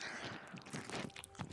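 Moist chewing of a burger by a man wearing a headset during a Spider-Man burger review: a run of irregular squelching and crunching bites with short pauses between them, fairly quiet and with no talking.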